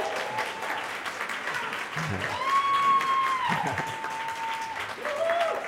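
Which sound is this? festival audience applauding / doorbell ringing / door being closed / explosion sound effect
festival audience applauding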